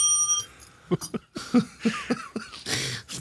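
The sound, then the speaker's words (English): A single bright ding from a service bell opens the moment, its metallic ring hanging briefly before people start talking over the fading tone. “Oh, you know, just digging my bell, trying to get service from you.”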